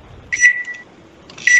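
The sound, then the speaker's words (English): A microwave oven in room 10 beeps twice as it is started to heat up food, each a bright, steady electronic tone about half a second long, the second cut off at the end, with faint low hum and no voices. “Hit the microwave.”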